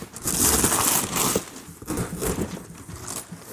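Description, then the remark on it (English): Loud ripping and crinkling as a cardboard box and its packing tape are torn open by hand without scissors, a long sustained rip followed by several shorter tugs and rustles. “I don't need these scissors. Let's just go for it.”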